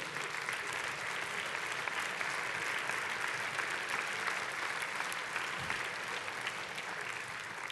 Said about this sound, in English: Would you stand to your feet? Let's give up a hand clap for Jesus, would you?